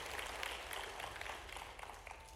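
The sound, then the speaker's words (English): An audience claps together as a clap offering of praise to God, a dense, steady patter of many hands that holds at an even level for a couple of seconds, with no voices over it. “If you believe that, give a clap offering of praise to our Lord God today.”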